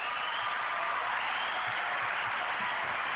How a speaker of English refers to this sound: As always, I love my hand clap of praise.